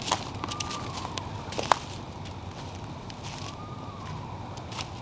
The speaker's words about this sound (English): Here it comes. This is an eastern screech owl.